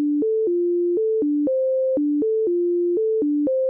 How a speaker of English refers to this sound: To do this, Deutsch recreated a simple set of tones alternating between low and high and sent it to the left ear. And then she did the same with a different set of tones and sent it to the right ear.